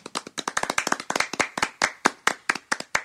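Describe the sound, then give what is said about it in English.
A burst of children clapping their hands, giving themselves a clap after shaking their shakers. Many quick, uneven claps overlap at first, then thin to a looser, irregular patter. Sharp, bright and fairly loud, with no talking. “And give yourselves a clap.”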